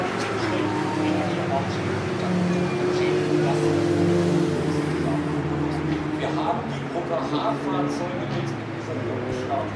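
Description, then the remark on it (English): An Opel Manta race car drives past with a loud, steady engine roar that swells and fades over several seconds, amid a crowd cheering and indistinct voices. “That's a huge cheer for the Opel Manta going down there.”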